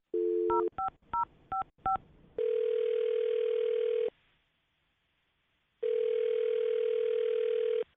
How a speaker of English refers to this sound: Okay, I'm going to dial his phone number right now, and good luck.